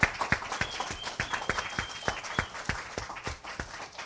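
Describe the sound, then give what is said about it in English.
An audience claps and applauds the mothers present steadily for about four seconds, a dense patter of many hands with a few sharper, louder claps standing out, plus faint whistles or cheers mixed in. “Just everyone just give them a round of applause for their worth.”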